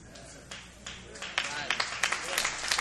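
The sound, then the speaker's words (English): An audience breaks into clapping that starts as a few scattered claps and quickly swells into dense, steady applause, with some voices faintly mixed in. “You don't have to clap.”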